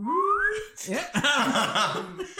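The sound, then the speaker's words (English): A short whistle-like falling tone, voiced as if imitating a sound effect for a character falling, lasts about half a second before a burst of lively talk and laughter takes over. “they did one of the whistle when he under the little Macy's thing. He like falls and then they.”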